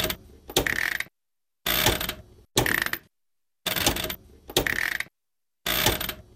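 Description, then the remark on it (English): A household washing machine's on-off switch clicks in six short bursts of rattly mechanical clicking, each separated by a brief silence, with no voices. “The on-off switch.”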